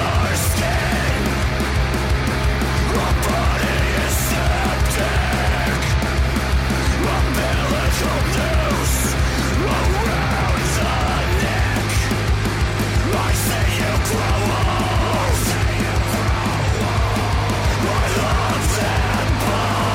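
A loud, dense band song from an album plays throughout: thick distorted guitars over a deep droning bass, with steady pounding drum hits and no speech over it.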